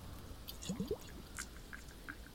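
Soft, quiet water sounds in a guided heart-centering meditation: a few brief squishy drips in a quick cluster, followed by faint scattered trickles over a low, steady background hush. No talking.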